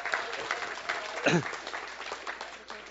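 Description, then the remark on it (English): Steady crowd applause for a group of people as they sit down fills the whole stretch, a dense crackle of many hands clapping at an even level, with a brief voice rising out of it midway. “Give them another hand as they sit down.”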